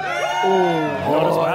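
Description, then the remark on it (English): A large crowd of Cats and Swans fans at the MCG cheers and yells, with many voices blending into a loud, sustained roar that swells briefly as the spectators respond together. “Who here is cheering the Mighty Bloods?”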